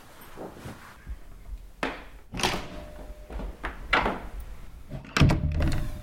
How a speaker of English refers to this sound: The cat just got up and walked over to the door. When I open the door, it immediately leaves my room.